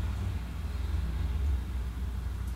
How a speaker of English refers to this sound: There's sports car racing going on there, and the sounds are just tremendous.